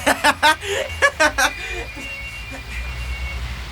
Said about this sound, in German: Puh, der Wagen entfernt sich.